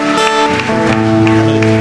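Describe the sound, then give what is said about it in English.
An audience claps in a steady rhythm to praise God, the sharp claps cutting through loud sustained keyboard music. “Come on, people, give the Lord a clap and praise God.”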